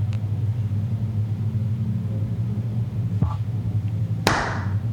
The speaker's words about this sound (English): I'm gonna try this clapping thing out again.